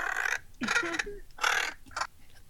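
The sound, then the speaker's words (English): A crow caws four times in quick, uneven succession, each call a harsh, raspy burst, fairly loud with brief gaps between and no other sounds around them. “The bird crows, the actual animal, the real thing.”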